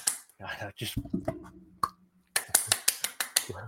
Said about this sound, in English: I just like the way you clapped there. That was great.